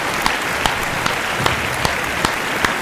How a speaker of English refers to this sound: Wow, you want a round of applause? I do want a round of applause. Let me find it.